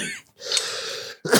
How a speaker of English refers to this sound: you failed because rather than pinching your throat closed because the smoke will dry out, making it tenser, thus leading you to have a cough. You just had the cough. Yeah, and it gives me a cough.